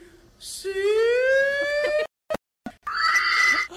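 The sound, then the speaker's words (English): A contestant in a pig/hog calling contest gives a loud, drawn-out hog-calling shout that rises steadily in pitch, breaks off into a couple of clipped yelps, then ends with a second high, strained call, all fairly loud. “Your final and 3rd contestant in the pig/hog calling contest.”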